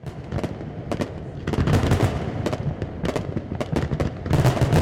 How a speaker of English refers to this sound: And the North San Diego Bay is a great spot to see fireworks. It creates something of a natural amphitheater for the show.